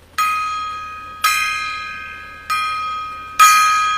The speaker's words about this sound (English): There's the gong. The gong is right there. So, got that off of Amazon.